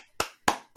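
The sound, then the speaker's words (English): Three sharp hand claps from a single person applauding for themselves, fairly loud, spaced unevenly about a quarter second apart with brief decays between them and no talking. “I'm applauding for myself.”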